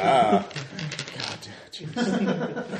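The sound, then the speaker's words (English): A handful of polyhedral dice, ten-sided and twenty-sided, rattles and clatters across a hard surface in a loose burst of clicks, with voices and a bit of laughter around it. “I'm going to roll all the D10s. And some D20s for good measure.”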